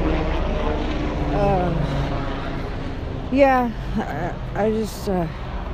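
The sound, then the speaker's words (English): A propeller airplane drones steadily overhead with a low, throbbing hum that persists throughout, while a person speaks briefly over it toward the end. “Anyways, airplane.”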